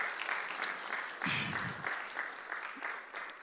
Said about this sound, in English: All right, give the Lord a round of applause quickly. Come on. Come on.